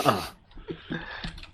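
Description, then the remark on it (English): Soft, irregular keyboard taps click away quietly in the background, a handful of light keystrokes spaced unevenly after a brief louder burst at the start. “Who's typing?”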